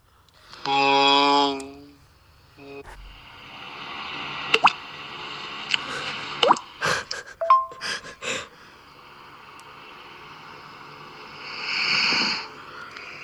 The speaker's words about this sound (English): It's just breathing.